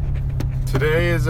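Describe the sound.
Steady low rumble of a car driving on the road, heard from inside the cabin, with a person's voice starting to talk over it near the end.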